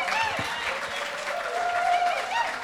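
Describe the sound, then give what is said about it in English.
A crowd applauds steadily, a dense wash of clapping that fills the whole stretch at an even level, with a few faint cheers or whoops rising above it. “Y'all want to applause for that?”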